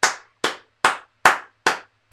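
A clapping sound effect standing in for booty clapping: six sharp, loud slaps in a steady, even rhythm, each with a quick bright crack that fades fast, with no voices.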